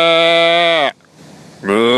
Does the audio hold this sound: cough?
no